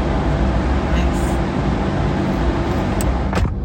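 A deep, constant mechanical rumble fills the enclosed car deck of a ferry full of parked cars, heavy engine drone and vehicle noise throughout, with a couple of sharp metallic clicks near the end.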